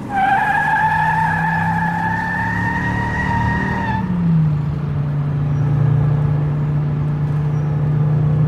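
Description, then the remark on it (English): A car accelerates away from a hospital emergency entrance. Its engine roars loudly with a sustained high, squealing whine, then after about four seconds drops abruptly to a lower, steady drone as it keeps driving. No one speaks. “Step on it!”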